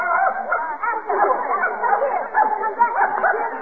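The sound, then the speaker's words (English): A dog barks and yips in a rapid, nearly continuous stream, fairly loud, with whiny, excited yelps blending together and no clear pauses. “Madam, you can't bring that dog in here. Dogs aren't allowed.”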